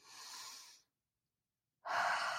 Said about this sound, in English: So you do want to breathe. And sometimes it's helpful to try breathing in through your nose and out through your mouth.